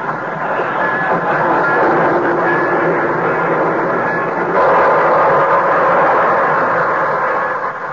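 vehicle, train pulling into station

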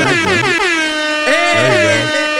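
sound effect, air horn sound effect

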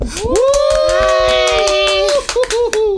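crowd, round of applause

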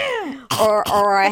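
human body sound, throat clearing

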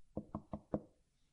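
household object, knocking on a door

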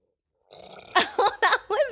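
human body sound, loud burp

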